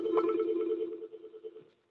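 signal or alarm, phone ringing

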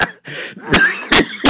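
human body sound, coughing

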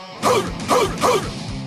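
animal, dog barking

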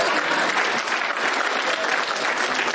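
crowd, audience applause

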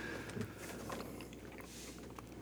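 human body sound, person chewing food

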